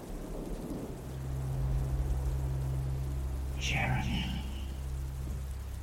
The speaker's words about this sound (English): The rain danced on the roof, crackling. He lost himself in the static, convincing himself that this was all a dream.